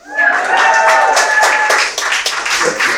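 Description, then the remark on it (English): An audience claps together in a steady burst of applause after a baptism, welcoming the newly baptized, many hands at once, with a few faint voices mixed in. “Y'all can clap.”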